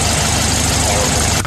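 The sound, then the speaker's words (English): A voice imitates a rumbling clothes dryer, producing a steady, loud, low mechanical drone that holds evenly for about a second and a half before cutting off. “I don't get out much and my dryer sounds like this.”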